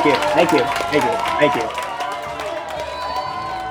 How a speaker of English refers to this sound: hit that damn applause button.